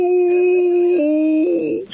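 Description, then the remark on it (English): A person on a show imitates a wolf howl with a single sustained, loud vocal tone lasting about two seconds, its pitch dipping midway, rising again and then wavering as it trails off. “I got the wolf howl.”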